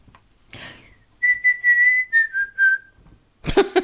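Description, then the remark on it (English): Someone whistles a short tune: a run of several clear, sustained notes that drift gradually downward in pitch after a quick breath. A voice cuts in just as the melody ends. “I'm going to try and whistle the clue.”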